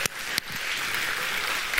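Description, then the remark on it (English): A church audience claps steadily for its LaGrange campus in a morning service, a dense wash of many hands with a few sharper claps standing out, sustained at an even loudness throughout, with no voices. “Can we give our LaGrange campus a big round of applause this morning?”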